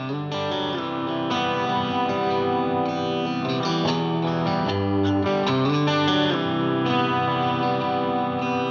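A band's rock track plays throughout, with thick, distorted electric guitars and steady chords at an even, full volume. It's an instrumental stretch with no singing or talking.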